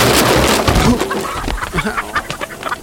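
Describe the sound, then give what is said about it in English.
A flock of chickens clucks and squawks in a busy, agitated burst as they escape their coop, several birds calling over one another, with scattered sharp cries fading into brief flutters of noise. “All the chickens are escaping!”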